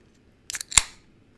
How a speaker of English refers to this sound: Ooh, that crack. A little Friday office brewerino beer here. Let me take a sip.